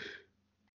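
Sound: sneeze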